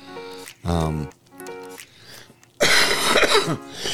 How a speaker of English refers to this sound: You hear me? I'm coughing that stuff up. It's coming out.